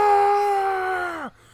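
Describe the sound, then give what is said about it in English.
A man lets out a single sustained, strained scream in imitation of the cry of the Pokemon Guzzlord from the anime, holding a steady pitch for over a second before it drops and cuts off abruptly. “Because his Pokemon cry in the anime is just a man screaming.”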